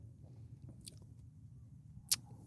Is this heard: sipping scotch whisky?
yes